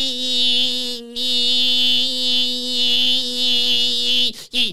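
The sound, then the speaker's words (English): A loud, steady cicada buzz drones on with a shrill, harmonic-rich whine, dipping briefly after the first second before resuming and then cutting off abruptly near the end. “Cicada.”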